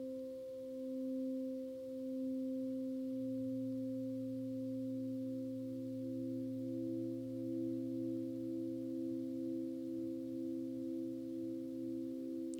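A Tibetan singing bowl rung during a meditation sustains a low, humming ring, its deep tone and higher overtones holding steady and gently pulsing throughout, with no voices.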